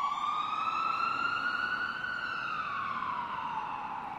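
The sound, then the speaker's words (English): An ambulance siren wails steadily and loudly, its tone rising slowly and then sliding back down, with a faint rumble of traffic underneath and no one speaking. “Soon after, Austin was in the back of an ambulance, his best friend Jim Ross by his side, en route to the nearest emergency room.”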